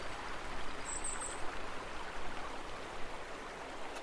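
river water flowing

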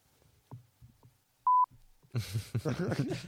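censor bleep over swearing

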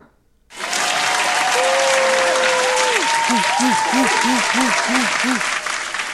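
applause sound effect

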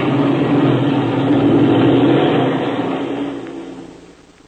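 airplane engine taking off

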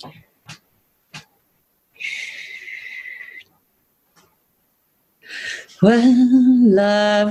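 donkey braying

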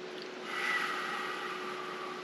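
wind chimes ringing

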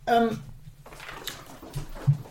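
dog squeaking and whimpering

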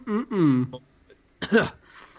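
coughing

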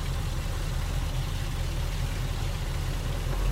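car engine idling

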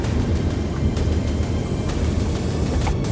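car backing up

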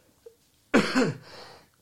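cough

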